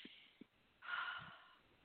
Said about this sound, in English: But before we get into all that, everybody take a sniff. Ready, sniff and blow.